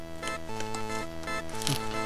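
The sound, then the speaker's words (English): Someone thumbs at and slices open a package with car keys, producing short scratchy cutting and ripping bursts about every half second over steady background music with changing chords. Nobody speaks. “A thumbing and cutting with car keys.”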